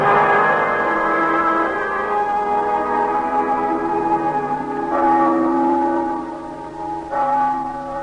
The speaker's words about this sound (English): Mama, the bells are ringing again. Is it Sunday? No, Danny. The bells ring that way when people die.